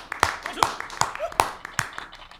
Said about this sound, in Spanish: Señor cónsul, yo sé que usted está impresionado con los aplausos que salen de esta máquina tan moderna. Increíble.